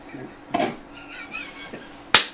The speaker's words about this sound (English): Actually, that was a really shitty clap. Let's do that one again. There we go. Now we got the sound we need.